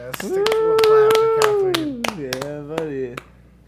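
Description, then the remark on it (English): Sharp hand claps, a round of applause, repeat at an uneven pace for about three seconds while a voice holds a long, wavering howl-like cheer over them, then both stop abruptly. “You know, the round of applause”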